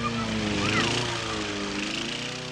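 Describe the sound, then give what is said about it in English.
A lawn mower runs steadily, its motor droning with a continuous buzzing hum that holds fairly even in loudness throughout. “A bunch of kids are running and playing, while some grown-ups are mowing their lawns and gardening.”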